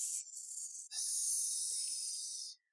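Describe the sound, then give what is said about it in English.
A person makes a drawn-out snake-like hiss with their voice, delivered suspiciously, two sustained breathy sibilant bursts separated by a brief pause, fairly loud with no talking. “Deliver suspiciously. Yeah, and also like a little bit like a snake.”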